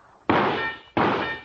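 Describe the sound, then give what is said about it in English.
Two loud shots strike a metal duck target in quick succession, each a sharp clang that rings on with a bright metallic tone before fading. No one speaks. “You think I hit that duck twice before it sinks?”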